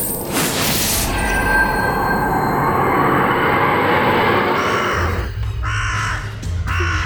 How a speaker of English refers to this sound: Toto, the ravens! Hundreds and hundreds of ravens!